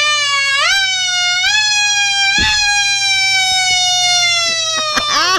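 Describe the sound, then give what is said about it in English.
A voice imitates the phone emergency alert siren tone due to sound at 2:20 East Coast time: a loud, steady high wail that swoops upward several times, gradually sinking in pitch between rises, with no talking. “This is what it's going to sound like at 2:20 East Coast time.”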